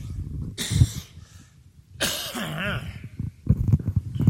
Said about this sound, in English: Whenever I get talking, that cough wants to come through.